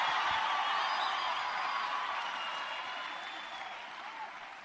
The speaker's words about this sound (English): Shout hallelujah. Clap your hands. Give God a praise.